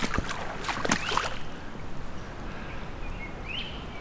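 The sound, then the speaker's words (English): A great crested flycatcher gives a brief rising whistled call near the end, fairly faint over steady water and paddling noise, with splashy bursts at the start. “There's the other call of the great crested flycatcher.”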